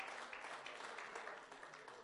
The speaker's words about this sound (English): hand clap of praise while everybody makes your way back to their seats.